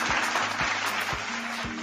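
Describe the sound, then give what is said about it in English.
Steady, dense applause from a crowd, a continuous crackle of many hands clapping at even loudness, with a soft low thump recurring about every half second beneath it. “So if you're hearing this out of my voice right now, clap for yourself.”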